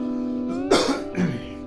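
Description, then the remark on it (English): Two short, harsh coughs, about half a second apart, over a steady humming tone in the background. “And cough a lot.”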